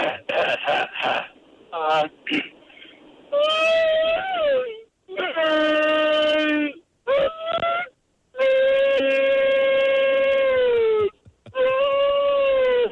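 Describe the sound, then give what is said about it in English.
A phone caller's voice imitates a whale call with long, drawn-out moaning wails that swoop and bend in pitch, broken by a few short choppy bursts early on, loud and sustained with brief pauses between. “We'd love to hear your best whale impression.”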